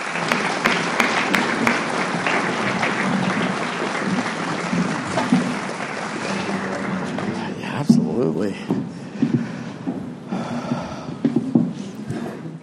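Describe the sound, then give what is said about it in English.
An audience applauds steadily for a guest speaker who has just been introduced, a dense wash of clapping that thins out after several seconds as scattered claps and murmuring voices take over. “And let's all give him a round of applause.”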